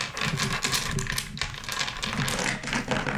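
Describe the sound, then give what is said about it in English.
Loose change jingles and clinks in a dense, rapid clatter of small metallic taps that carries on steadily for a few seconds, with no voices. “You hear like some like squeaks open, some change like the...”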